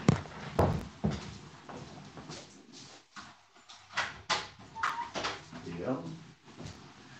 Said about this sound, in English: I just have to open the door because I forgot to unlock it. Hold on.